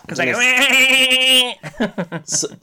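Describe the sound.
A person does a loud, wavering goat-like bleat for about a second and a half, then breaks into quick chuckling speech right afterward.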